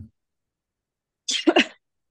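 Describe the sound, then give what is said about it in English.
A short cough from someone getting over an illness, a rough breathy burst that breaks into two quick hacks, heard on its own with silence around it and no talking. “I was trying to like get into like cough drops and stuff in the morning, tr trying to avoid this, but I'm so sorry.”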